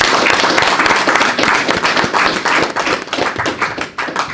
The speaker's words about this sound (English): Gents, I think you agree. Round of applause.